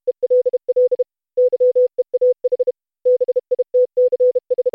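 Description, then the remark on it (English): Steady single-pitch telegraph tone beeps keyed in short and long bursts, a rapid Morse code message spelling "hell yeah, bitches" tapped out in three clustered groups with brief pauses between, loud with no talking. “Which, for real, is Morse code for, hell yeah, bitches.”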